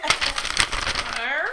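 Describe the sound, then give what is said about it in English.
A sheet of paper is rustled and crinkled, a quick burst of dry crackling for about a second before a voice begins to speak. “Here's a bit of paper.”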